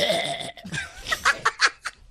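Wet, throaty gargling up close, a sustained bubbling rattle followed by several short choppy gurgling bursts, with no speech around it.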